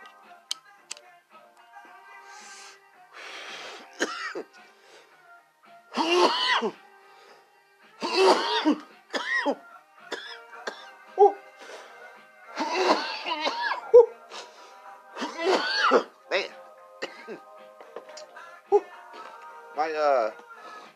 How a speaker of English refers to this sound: When I'm coughing, it's because it's really organic.